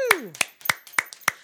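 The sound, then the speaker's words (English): Five sharp, evenly spaced claps in a steady rhythm, about three per second, fairly loud, given to celebrate a record-setting number one album. A brief falling vocal sound comes just before the first few claps. “Give him those claps.”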